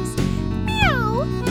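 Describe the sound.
A single drawn-out meow, sung by a human voice imitating a cat in a song about black cats creeping, rises and then slides downward over a steady, droning musical background.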